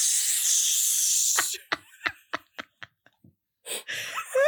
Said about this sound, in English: And this song is playing while we're watching the love interest boy, shirtless, put on spray deodorant.